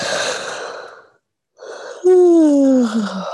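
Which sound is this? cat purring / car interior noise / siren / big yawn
big yawn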